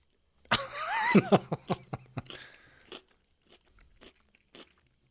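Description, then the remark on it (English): A loud crunchy bite into kimchi, followed by a rapid series of crisp chewing crunches that gradually grow softer and more spaced out before fading. “Okay. It's crunchy. That I is can crunchy. Hear it.”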